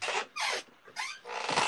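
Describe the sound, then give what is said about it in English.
A squeaky chair creaks and rasps in four quick scraping strokes, moderately loud, with brief pauses between them and no talking. “Sorry for my squeaky ass chair.”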